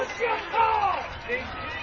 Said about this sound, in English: And obviously you heard the crowd a little bit upset over that call. I think they didn't like it,